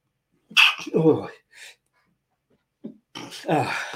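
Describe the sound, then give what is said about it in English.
Two loud sneezes separated by a pause of a couple of seconds, each a sharp breathy burst followed by a voiced release, with a short sniff in between. “I'm about to sneeze, so do excuse me.”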